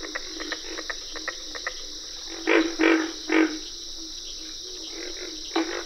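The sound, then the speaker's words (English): Cricket frogs and carpenter frogs calling in a dense chorus: a steady high-pitched trill with rapid clicking notes, broken by three louder, hollow knocking calls close together, then another near the end. “You can distinguish the treble notes of cricket frogs and the distinctive katuk katuk calls of carpenter frogs.”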